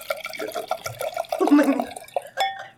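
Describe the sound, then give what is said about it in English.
Liquid glugs and splashes as a drink is poured from a freshly popped bottle into a glass, the gurgle building midway, with faint voices and clinks around it. “Let me just get a glass.”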